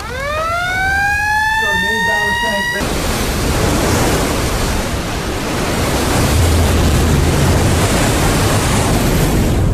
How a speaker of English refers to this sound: Chief of the watch, sound the dive alarm. Aye, sir. Passing the word. Dive, dive, dive.